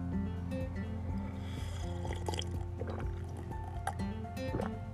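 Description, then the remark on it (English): Several wet sipping and slurping sounds from a first morning cup of coffee, spread irregularly across a few seconds, over a steady low musical drone with no talking. “Have that first cup of coffee. Coffee cheers to a brand new day, to Happy Fun Friday, where leadership begins.”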